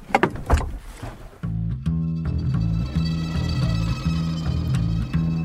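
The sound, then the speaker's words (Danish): Harbour ambience with moored boats: a few knocks and clanks at first, then a steady low engine rumble that throbs evenly to the end, with no one speaking. “Så er vi ankommet. Og her ligger alle bådene.”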